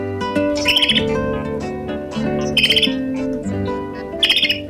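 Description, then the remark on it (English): Pygmy nuthatch calls come in three quick bursts of high, rapid peeping chirps, spaced about every two seconds, over a steady, sustained tonal background that sounds like soft music. “Well, they're all types of pine trees, and they're all known to host today's featured feathered friend, the pygmy nuthatch.”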